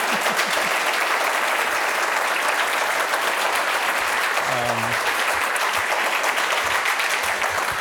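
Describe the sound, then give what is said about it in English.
Steady applause from a crowd in the Arthur offices in New York, thanking a guest: a dense continuous patter of many hands clapping at an even level, with a brief low voice murmur midway through. “And you know, before we open the stage up to the audience here, maybe a quick clap to thank you.”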